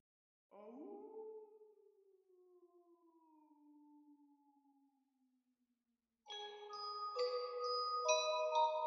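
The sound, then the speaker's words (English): A single long wolf howl swoops up and then slowly sinks and fades over several seconds, followed after a brief silence by louder chiming music. “Do you hear anyone howling?”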